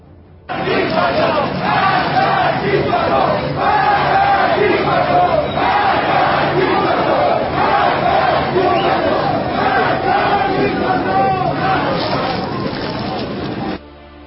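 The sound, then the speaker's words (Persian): A crowd in Tehran, Iran, shouts and chants slogans from windows together in a sustained, loud roar of many overlapping voices that rises and falls rhythmically for about thirteen seconds before cutting off abruptly. “فعلا تهرانی ها در مترو و لب پنجره دارن مبارزه میکنن و امروز هم باز فریاد زدن.”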